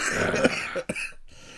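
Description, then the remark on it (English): A short, rough cough bursts out, a stifled laugh that comes out as a throaty hack, then fades into quiet background noise. “That was actually a laugh. It just came out as a cough.”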